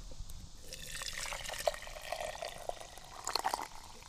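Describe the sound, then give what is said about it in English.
Hot water with a little tea steeped in it is poured into a teapot holding fresh herbs and grapevine tendrils, a steady, quiet splashing stream lasting a few seconds with small gurgles and drips near the end. No one speaks. “And I'm going to add some hot water, in which I have steeped a little bit of tea ahead of time.”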